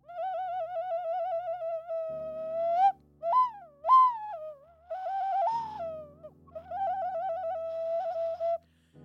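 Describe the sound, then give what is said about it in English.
An ocarina plays a wavering, breathy melody with heavy vibrato, swooping up sharply a few times before settling back. A low buzzing hum sits underneath for much of it. “That was the ocarina pause.”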